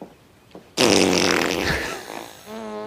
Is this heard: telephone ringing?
no